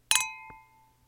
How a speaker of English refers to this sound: Here are mimosas landing well at the table. Timed.